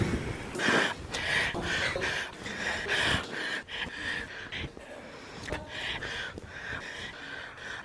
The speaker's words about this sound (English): The amount of times this woman has just been like heavy breathing, panting into her mic, right? It's fucking obscene, you know.